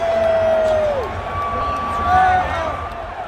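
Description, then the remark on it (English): A large crowd, excited to see Donald Trump, roars and cheers continuously, with loud whistles cutting through and a few scattered boos mixed into the noise. “So you can hear a couple boos.”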